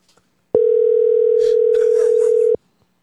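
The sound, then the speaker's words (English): A single two-second ringback tone from a phone call, loud and steady with an abrupt start and stop, followed by silence as the call goes unanswered. “I want to know if he answers the phone”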